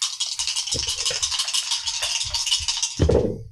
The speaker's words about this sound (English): Sounded like a lot of dice. Yeah, and it's not done yet.